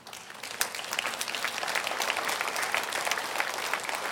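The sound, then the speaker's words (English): Scattered audience applause at New Spring, a steady patter of many hands clapping at moderate volume for about four seconds, with no one speaking. “You know why some of our applause is tepid?”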